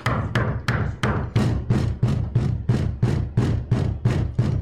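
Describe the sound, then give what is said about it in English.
A rapid, steady series of about a dozen loud knocks on a front door by a middle-aged man, evenly spaced, with no voices. “comes sidling up to the front door and knocks on the front door.”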